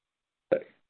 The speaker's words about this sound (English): Just had to clear my throat.